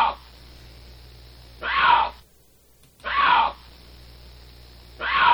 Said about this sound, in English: It sounds like a cat, doesn't it? Well, that's what it is. It's lynx, and it's spelled L-Y-N-X.